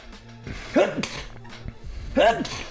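Two sneezes, about a second and a half apart, each a short voiced intake followed by a sharp, breathy burst, moderately loud over a faint background hum.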